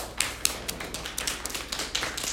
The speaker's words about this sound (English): And take and pat with your left hand down your right arm.